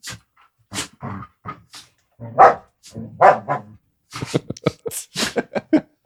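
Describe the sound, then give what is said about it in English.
A female dog gives a string of sharp, high-pitched barks in irregular bursts, fairly loud, with quick yips crowding together near the end. “She's got a very high-pitched bark.”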